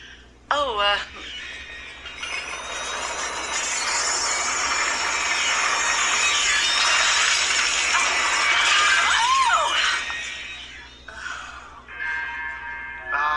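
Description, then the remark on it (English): A loud, sustained rumbling and rattling din of a building shaking during a meeting, with glass objects smashing throughout for several seconds before it fades; brief voices cry out at the start and near the end. “They begin to discuss why Dr. Fung is missing at the meeting when the building begins shaking and glass objects shatter”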